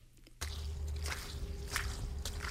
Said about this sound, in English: September 8th, around 11 o'clock, just a half hour after low tide. And I'm at Carrying Place Cove. And I'm walking out on the mud flats here, which stretch, well, I'm not really good at distances, but it's easily half a mile, I'm going to say.